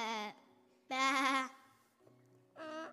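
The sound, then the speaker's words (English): A person imitates a sheep's bleat three times, with nasal, wavering "baa" calls, the middle one longest and loudest, separated by short pauses with a faint low hum. “Baa. A sheep?”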